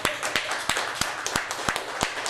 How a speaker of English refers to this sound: Everybody clap your hands.